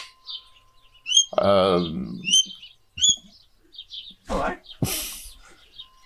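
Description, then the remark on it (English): A bird that has flown up wanting food chirps with quick, high, repeated tweets and one louder, harsher call, broken by a few brief rustling bursts near the end, at an old home in Torrington. “Do you like living in a place where a bird can just fly up and say hello?”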